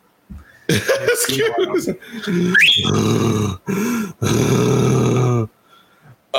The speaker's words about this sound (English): Your dog is snoring his ass off.